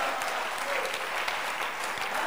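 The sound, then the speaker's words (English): An audience claps their hands in a steady, dense wash of applause that holds at an even volume for the whole stretch, with no voices standing out above it. “Can you clap your hands and judgment?”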